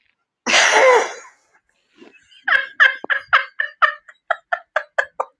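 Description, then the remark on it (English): A harsh, breathy rasp opens, then a rapid run of about a dozen loud, throaty gurgling pulses follows, a bubbling gargle-like sound with no talking. “Gargle, gargle.”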